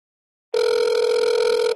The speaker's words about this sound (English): Here we go. Come on. It's ringing. That's a ring. That is a ring and a half, my friend.